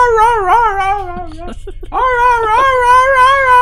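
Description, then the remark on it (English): A dog whimpers in a long, pleading, wolf-like whine that rises and falls in pitch, breaking off briefly halfway before starting again, loud with no talking. “As it's almost pleading with you in his cute but wolf-like tone.”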